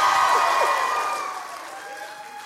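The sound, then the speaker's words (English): A crowd of people from New Bedford cheers and claps in a loud, dense roar when asked to make some noise, with a long high whistle-like tone running through it, the noise slowly easing off over a couple of seconds. “If you're from New Bedford, make some noise in this place.”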